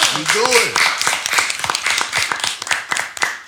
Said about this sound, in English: Clap it up for him for that, man.